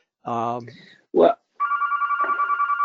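A telephone rings with a steady, rapidly trilling electronic tone, fairly loud, starting after a brief vocal sound and a short noisy burst.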